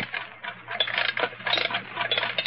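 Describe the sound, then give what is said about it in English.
An old alarm clock being wound, a rapid, uneven run of metallic ratcheting clicks in bursts for a couple of seconds, over a steady low electrical hum, with no voices. “Now, wind up that alarm clock and put it here on this lead table in the center of the magnetic field.”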